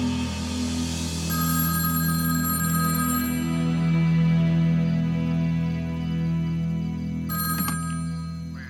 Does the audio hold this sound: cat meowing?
no